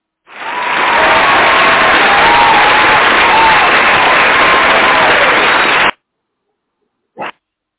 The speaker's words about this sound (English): Oh, dude, we gotta give you some applause for that one. Give me a second here.